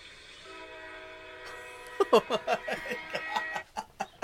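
A steady, droning train horn sounds for a couple of seconds, then gives way to a series of rhythmic, punchy bursts, like a train rumbling past, with no talking.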